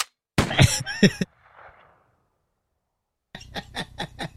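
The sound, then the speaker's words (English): A voice imitates the gunfire of someone shooting up a club: a loud burst of sharp, noisy vocal pops, a brief breathy hiss, a pause, then a quick rhythmic run of five or six clipped bangs. “When you hear this sound, that means someone's shooting up the club.”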